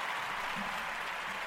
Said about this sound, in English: Black man is into the building. We're going to give applause, and that's it. You know, y'all hear it, you feel it.